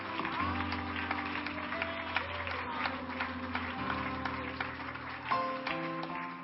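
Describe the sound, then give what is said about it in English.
A church audience claps their hands unto the Lord in praise, a dense, continuous patter over sustained keyboard chords at moderate volume throughout. “Can we clap our hands unto the Lord and give God praises?”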